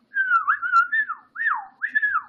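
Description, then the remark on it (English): A wolf whistle rings out clearly on its own: a wavering whistled note, then two quick swooping calls that rise and slide down, with no talking around it. “Draco dared Harry to take off his shirt, which he did to wolf whistles from Dean and Seamus.”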